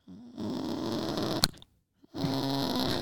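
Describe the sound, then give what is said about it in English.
A person imitates a chicken with two bursts of raspy, clucking vocal sound separated by a short pause, punctuated by a sharp click partway through. “Like, dude, I'm also pretty good at a chicken and a cow.”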